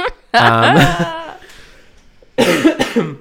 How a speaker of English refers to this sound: you have to edit out my coughs.